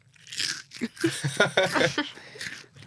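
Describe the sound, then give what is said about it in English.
Crisp crunching of a Cheez-It cracker being chewed, several sharp bursts in quick succession over about three seconds, with no talking. “See, I'm wrong, a Cheez-It.”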